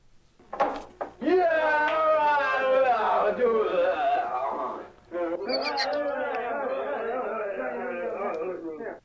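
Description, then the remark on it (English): A crowd of film extras murmuring and chanting together in a loud, steady babble with no clear words, during a film scene of a drinking contest set in Nepal, pausing briefly partway through before the rumbling chatter resumes. “And I got you to grab the audio on the crowd because I thought it was so funny.”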